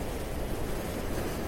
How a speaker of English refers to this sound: There's some people having a nice surf out there today. A few waves. Someone out there getting a good wave.